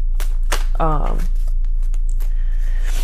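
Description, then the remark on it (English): Crisp papery riffles and flicks as a deck of tarot cards is shuffled, a handful of quick bursts spread across a few seconds, with a brief voiced sound partway through. “Again, if y'all hear shuffling in the background, that's me getting my cards together.”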